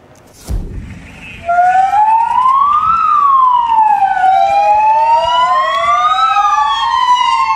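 Spanish police car sirens wail loudly from the street below, pitch sweeping slowly up and down in long continuous cycles, starting just after a brief low thump. The police used them to celebrate an elderly woman's 90th birthday while she was in quarantine in her apartment in Spain.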